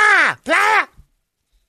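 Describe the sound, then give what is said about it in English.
A person imitates a manatee's cry with two loud, drawn-out vocal wails back to back, each swooping up in pitch and then sliding down, followed by a brief quiet word. “it's the cry of the manatee.”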